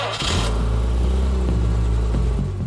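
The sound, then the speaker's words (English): A Jaguar car engine revs loudly, its deep throaty note climbing sharply at the start and then holding a steady, rumbling roar for a couple of seconds. “It was a perfect getaway car, and it was his getaway car of choice.”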